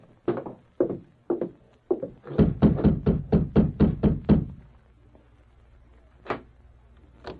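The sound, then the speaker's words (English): A man knocks on the wooden door of a doctor in town, solid knocks: four slow, spaced knocks, then a fast run of about eight sharp raps, a pause, and one last knock. “He watched for a time to make sure Dr. Martin was alone, then advanced and rapped on the door.”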